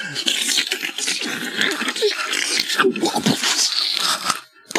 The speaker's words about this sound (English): Sorry, that was me splashing into the water.